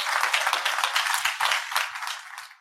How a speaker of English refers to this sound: So we thank you, and I think you deserve a round of applause for at least that.